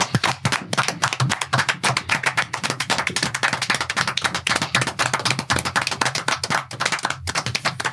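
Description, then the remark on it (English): Several people give a ten-second clap for Scott Hall, clapping steadily for about eight seconds, a dense, loud run of sharp, rapid smacks with no talking over it. “Oh, yeah, 10 second clap.”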